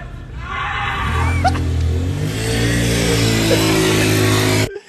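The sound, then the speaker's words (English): Filmed from a balcony, a car engine revs hard and accelerates away, its droning roar stepping up in pitch as it gains speed, then holding loud and steady until it cuts off abruptly. No voices. “It's just like he just screams and zooms away, dude.”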